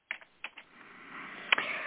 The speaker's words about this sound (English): Just to jump in for a minute, people are asking about what is that clicking. Folks, I am legally blind. I cannot see my keyboard. Don't know if I'm hitting it right. I use a very old-fashioned, very loud keyboard to help me type.